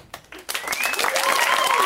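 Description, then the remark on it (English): A comedy show audience's applause, warming up the intro for the show's final comic, swells quickly after a brief pause into a dense, steady wash of clapping, with a few high whistles and cheers rising over it as it grows louder. “Can we start with some applause to warm up the intro?”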